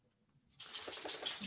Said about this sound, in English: My dog's deciding to shake. Sorry about that.